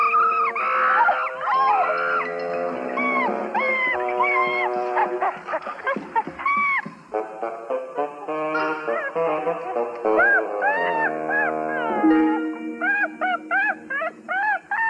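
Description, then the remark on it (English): A monkey, Cheetah, Tarzan's pal, who has been drinking Matanga juice, screeches and chatters loudly, a near-continuous run of shrill, rising and falling squeals that break into quick, choppy bursts toward the end, with no talking. “Oh, you crazy monkey, you give me that.”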